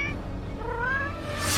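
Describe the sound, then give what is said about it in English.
A single drawn-out cat meow, rising and wavering in pitch, fairly clear, with a soft hiss toward the end and no voices. “Black cats, magic, witchcraft, you probably know this association.”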